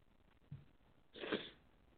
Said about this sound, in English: So, of course, Cherokee Rose watching by way of Periscope.tv is getting a good laugh out of apparently my little sneezing fit.